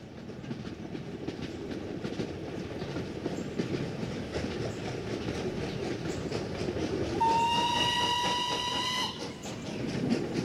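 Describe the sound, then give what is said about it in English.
A train rolls steadily along railroad tracks with a heavy rumble and rhythmic clacking of wheels, loud, and a horn sounds for a couple of seconds near the end. “Compensation that would dramatically shape Captain Thurmond's future, because this particular piece of land, located on the north side of the New River, had a railroad running through it.”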